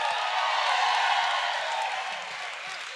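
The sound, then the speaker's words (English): A crowd claps and shouts together in praise to the Lord, in a dense, sustained wash of applause and voices that stays loud throughout and eases off slightly toward the end. “Give the Lord a clap and a shout like if you got energy.”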